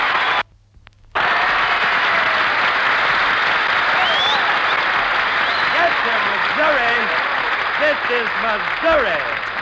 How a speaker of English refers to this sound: Oh, Jackson, listen to that applause.